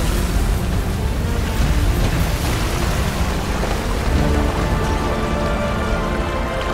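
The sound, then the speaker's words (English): Heavy, steady downpour fills the scene, a dense wash of rain hiss with a deep low rumble underneath, holding constant throughout with no voices. “And the windows of heaven opened, and the waters began to rain down on the earth.”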